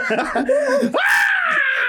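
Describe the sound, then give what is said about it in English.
A brief vocal sound rises suddenly into a loud, sustained high-pitched scream from a single person, piercing, lasting about a second. “Just scream.”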